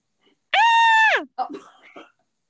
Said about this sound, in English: She notices him in the reflection and screams.